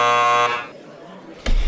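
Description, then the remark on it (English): A loud, harsh game-show-style buzzer blares for about half a second and cuts off, followed by a quiet pause before a voice briefly starts up. “All right, I got to give myself a buzzer for doing that.”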